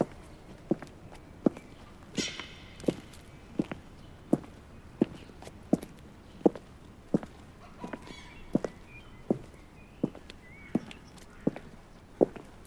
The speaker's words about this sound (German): Ein Kirchhof. Er betrat ihn. Er ging auf dem Weg um die Kirche herum ein paar Schritte.